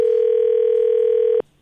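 A steady telephone dial tone hums loudly and evenly for about a second and a half while a call is being placed, then cuts off abruptly into near silence. No voices are heard.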